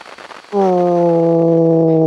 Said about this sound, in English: You hear crackling, static, nothing much else.